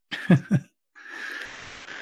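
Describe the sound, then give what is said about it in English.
A big yawn from a tired person: two short throaty catches give way to a long, breathy, drawn-out exhale carrying a steady hum, fairly soft and with no talking. “Next up is a big yawn from me because just coincidence. I'm just tired.”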